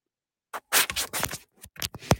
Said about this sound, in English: I can hear him shuffling papers, so I don't know why he won't answer, but does he have his headphones in?